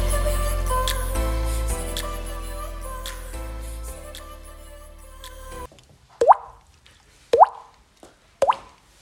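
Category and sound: household object, water dripping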